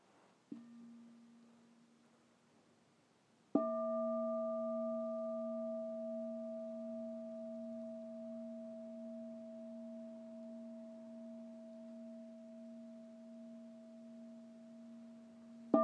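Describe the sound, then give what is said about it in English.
During a guided meditation, a meditation bell is struck three times: a soft first strike, then a fuller ring whose low, steady hum and higher overtones sustain and slowly fade, with a third strike at the end. No voices. “And as we continue very slowly this process, I'll give us 3 sounds of the bell.”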